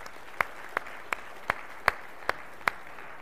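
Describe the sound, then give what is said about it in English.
Sparse, steady handclaps at a church gathering, thanking the Sunday-morning volunteers: seven sharp claps evenly spaced about a third of a second apart, fairly soft over a faint background hiss, with no talking. “That you can clap for them.”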